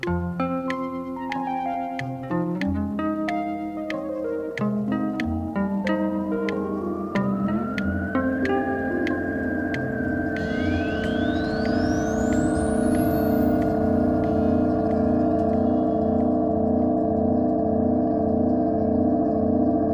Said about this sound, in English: This week with the sounds that cars and trucks, hybrid or not, make as they cross the Rodenkirchner Bridge in Cologne, Germany.